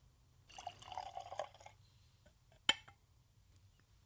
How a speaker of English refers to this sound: Okay, well, let's go ahead and let's pour.